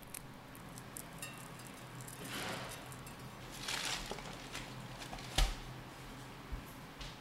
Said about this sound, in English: And so what you're going to do is just sprinkle some of this flaked sea salt on top, and we're going to bake it off in the oven for around 10 minutes. Okay, I'm putting some flaky sea salt on.